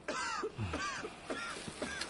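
A young lad gives a run of four harsh, hacking coughs, evenly spaced over a couple of seconds, each rough and throaty. They're fairly quiet, with no talking around them.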